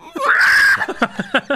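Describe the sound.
A voice mimics a woman's high, shrill scream, held for about half a second and rising slightly, then breaking into four or five short, choppy bursts like breathless giggles. Loud.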